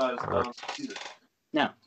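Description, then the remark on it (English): Dice dropped by a player drop and clatter across a tabletop, a quick jumble of bright rattling hits that settles, then one short final burst; voice-like sounds mingle with the clatter. “I dropped my dice.”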